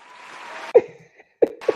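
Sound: applause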